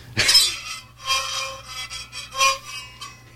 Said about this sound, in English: What's this? It's a little Hill Tribe fiddle, I guess. Two-string, little coconut fiddle. And it seems like the beauty of it, as far as I can tell, is whether you know how to play it or not, it still sounds the same.